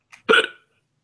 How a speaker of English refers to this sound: Goddamn hiccups.